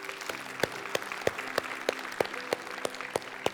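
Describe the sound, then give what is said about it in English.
A church audience applauds after a prayer in a steady, dense wash of clapping, with sharp, regular accents about three times a second cutting through. A low, sustained hum sits underneath, and no one speaks. “Can we give God a round of applause today?”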